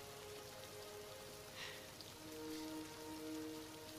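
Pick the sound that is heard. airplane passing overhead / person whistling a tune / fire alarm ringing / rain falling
rain falling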